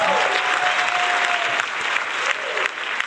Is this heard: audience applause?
yes